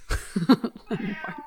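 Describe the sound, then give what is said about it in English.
A cat roaming around a basement meows several times in quick succession, short, nasal cries, with a brief low thump at the start and no one talking. “There's a cat roaming around opening cabinets.”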